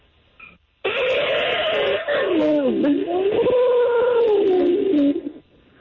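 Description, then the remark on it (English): A caller imitates an elephant's trumpet with a loud, sustained, wavering vocal blare lasting about four seconds, its pitch dipping and rising before cutting off. “Here's an elephant, okay? All right, let's hear.”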